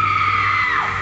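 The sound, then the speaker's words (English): A woman's loud, piercing shriek holds steady for about a second before its pitch sags downward at the end, with a low electrical hum running underneath. “and there it is, the shriek.”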